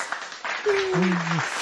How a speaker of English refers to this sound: Took me a second to find the right button for that. No, actually, I have people hired in the back of my office. I have a little button I push that says applause, and they all clap.